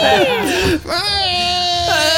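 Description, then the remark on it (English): A person's voice imitates the Wilhelm scream for a creature being stabbed from behind: a loud, high, wavering yell that dips, breaks off briefly, then rises into a long sustained second cry. “It Wilhelm screams, and we'll just leave it at that.”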